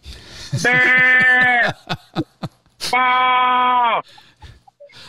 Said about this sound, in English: There's a baby goat in the back of a truck in Huntsville, Alabama right now.